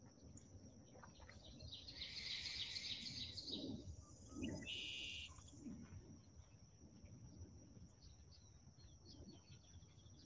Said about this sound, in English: Calm. Birds, nature.